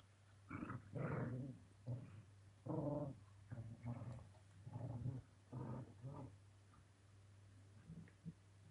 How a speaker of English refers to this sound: That we have to talk about that because I'm sure that you can hear them now. Oh, yeah, the dogs? Yeah, I can hear them.